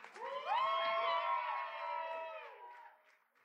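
An audience erupts in loud cheering and sustained high whoops, a bright wall of voices that holds steady for a couple of seconds before tapering off.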